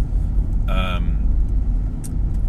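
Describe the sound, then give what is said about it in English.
Steady low road and engine rumble from a car being driven on a commute to or from work, broken by a brief bright tonal chime near the start and a short sharp click toward the end. “You'll hear me yawning a lot and clearing my throat and coughing and the car, you'll hear lots of noises from the car clunking and clicking and indicators and rain and wipers and engine”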